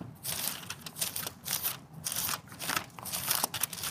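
Many Bible pages turning at once as people at a Bible study look up 2 Kings chapter 23, a steady rustle of overlapping flips and soft papery swishes coming in irregular bursts from around the group, with no one speaking.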